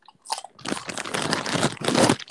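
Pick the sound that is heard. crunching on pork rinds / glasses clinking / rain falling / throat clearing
crunching on pork rinds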